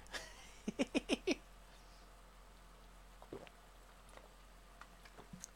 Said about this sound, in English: Big gulp.